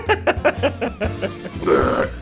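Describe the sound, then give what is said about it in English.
A fairly loud run of short throaty hiccups comes in quick, rhythmic succession, then trails into a longer gulping rasp, with no talking. “I got the hiccups over here, damn it.”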